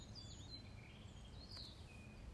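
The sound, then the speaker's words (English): Faint birdsong in the countryside: a few thin whistles and chirps drift over a steady low outdoor rumble, quiet and scattered rather than a full chorus. “You start to hear the bird song and the rustling of the trees.”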